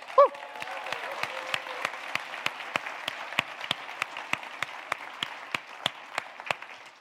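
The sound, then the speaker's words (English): A crowd applauds steadily for about seven seconds, a dense wash of clapping with sharp, evenly spaced claps rising above it in a regular beat. A brief high whoop comes at the very start. The applause welcomes a person coming up to speak at a celebration. “But when they come up, I want you to see a big round of applause, okay?”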